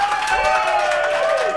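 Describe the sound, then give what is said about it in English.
An audience claps and cheers to vote for Arby's, with the response being measured: dense overlapping hand claps mixed with high whoops and shouts throughout, fairly loud and sustained with no pause. “If you wanted to be Arby's, clap right now for Arby's.”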